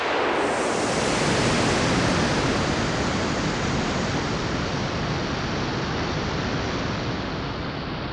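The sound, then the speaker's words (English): A slingshot launcher fires a space capsule, its arm slung around by tension built up by a rotor engine at its hub, taking the capsule to about 700 km/h: a dense, rushing roar swells up within the first half second, then holds as a loud, steady, hissing whoosh for about eight seconds, with no voices. “And then the slingshot fired.”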